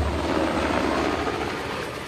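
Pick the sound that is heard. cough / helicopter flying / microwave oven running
helicopter flying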